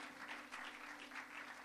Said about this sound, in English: Clap for him. Oh, clap for him. He's a contractor.